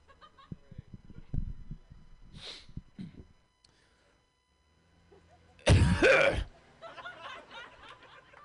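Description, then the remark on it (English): A man's voice imitates an old British man clearing his throat: a few rough grunts and hums, a pause, then a loud, harsh, gravelly hack followed by sputtering, wheezy breaths, all alone. “Now, my first impression is this is an old British man clearing his throat.”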